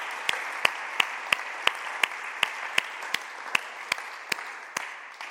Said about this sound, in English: That's fantastic. Let's give them some applause. Bless you guys.